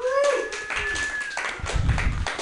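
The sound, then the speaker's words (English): An audience applauds, many hands clapping in a dense, steady patter with a few whistles and scattered cheers mixed in, fairly loud throughout the short burst. “Give yourselves a round of applause for going with the dark shit.”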